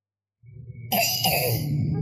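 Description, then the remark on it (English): A boy's wet, phlegmy cough, loud: a low rumbling throat sound builds into a sustained, rattling coughing burst; the cough has gone on for about four weeks. “He got a bad wet cough.”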